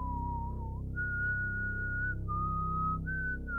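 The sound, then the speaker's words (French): A woman whistles the same strange, slow, wavering tune of sustained notes that step up and down in pitch, clear, with a low steady hum underneath and no talking. “C'est trop fort rien, je sais, mais elle sifflait toujours ce même air étrange et ça avait le don de très vite me taper sur les nerfs.”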